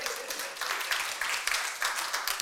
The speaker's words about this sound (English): This is why you should be clapping now, isn't it?